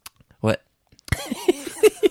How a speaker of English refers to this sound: Covered up by saying that you farted. It's less embarrassing than that if I tell the audience I farted. I don't want them to know I'm coughing.